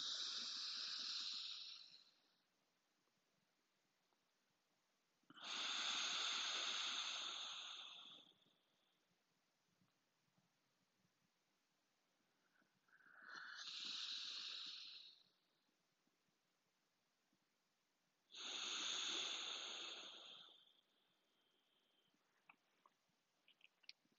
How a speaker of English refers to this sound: Again, through your left nostril, hold, and exhale through your right. Two more times.